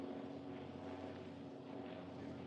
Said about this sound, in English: Navy observation plane, sir, communicating with their main base. Evidently looking for us again.